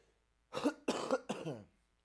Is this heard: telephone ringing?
no